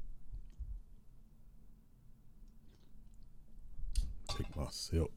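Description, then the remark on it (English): A quiet stretch ends in a cluster of wet mouth noises, a short slurping sip followed by gulping and a few soft clicks, louder than the faint background hum. “I gotta take my sip.”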